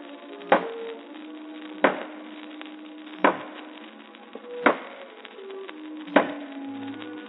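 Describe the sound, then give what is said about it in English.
Five sharp, evenly spaced knocks of a mallet striking a chisel into the stuck wooden lid of a box under a window seat, about one every second and a half, each followed by a faint lingering ring. No voices. “I went to work on it with mallet and chisel.”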